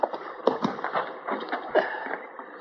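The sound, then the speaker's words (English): Horse hooves clip-clop in an uneven, unhurried rhythm, a handful of hollow knocks over a couple of seconds, muffled, with no one speaking, as the horses are stopped at a creek to be watered. “Let's water the horses here, Chester.”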